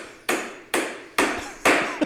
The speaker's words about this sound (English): Stop the hammering. Stop the hammering out there. Who's got a hammer? Where is it? Where's the hammer? Is it on the... Go up on the other floor. Somebody go up there and stop the hammering. Stop the hammering.